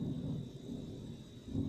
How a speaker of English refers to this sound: Sorry, it's raining out here. You might have heard that lightning, so that's what it was, a little bit of lightning. A little bit of lightning never hurt nobody.